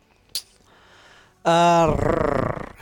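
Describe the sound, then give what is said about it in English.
After a short click and soft murmuring, a voice imitates a tiger's purr: a loud, sustained voiced tone that breaks into a rolling, rapidly pulsing growl for about a second. “It's like a sexy little tiger sound you just made.”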